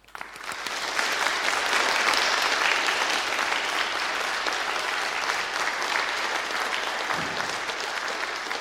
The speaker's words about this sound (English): So instead of shaking hands, what I'm going to ask the rest of you to do is to give them a round of applause and welcome.